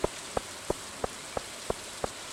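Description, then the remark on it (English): Steady rain falls on the farm in the video game Stardew Valley, hissing softly throughout, a fine even wash of falling water, while a string of seven evenly spaced soft ticks taps along at a quick regular pace. No one speaks. “It's raining, so all of our plants automatically count as watered.”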